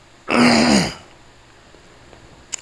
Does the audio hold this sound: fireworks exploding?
no